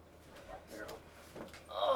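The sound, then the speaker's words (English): A door being shut, with a few soft knocks and shuffles before a louder closing sound at the end; no talking over it. “Let's shut this for sound.”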